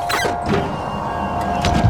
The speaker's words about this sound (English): Yes, the outer door's sealed. Open the airlock.